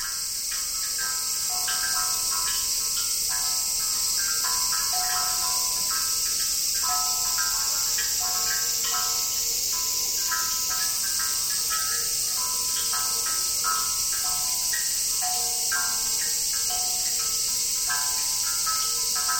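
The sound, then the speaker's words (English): A dense, steady drone of cicadas on a summer evening while water drips from a stone basin into a buried ceramic bowl, magnified by bamboo tubes, making ringing, hollow plinks in loose repeating patterns throughout. No voices are heard. Part of a soundscape composition by Steve Feld. “On a summer eve, cicadas added their own rhythms.”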